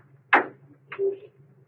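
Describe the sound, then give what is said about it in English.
A sharp metallic click as a car door is unlatched for Croker, followed a moment later by a short creaking swing as it opens, over the low steady hum of the car's running motor. “Unlatch your door for Croker.”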